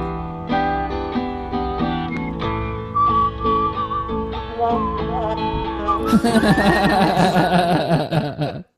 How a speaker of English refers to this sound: the only part of this I kind of like a little bit is towards the end with the whistle. It's like kind of the only part I think is all right, just because it seems old timey.